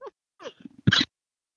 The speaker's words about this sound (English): Sorry about this cough.